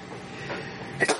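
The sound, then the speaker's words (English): A single quick sneeze bursts out near the end, a sharp, breathy double puff over a low steady background hum, with no talking. “Bless you. Thank you.”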